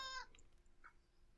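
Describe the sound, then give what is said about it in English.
A cat on the floor lets out a short, high meow, followed a moment later by a brief, softer chirp. Both are fairly quiet over a faint background hiss, with no talking. “I see we're now joined by JM's cat”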